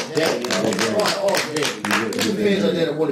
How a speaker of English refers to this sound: And we're not going to leave him out. We got to give him a round of applause. You know what I'm saying? Come on.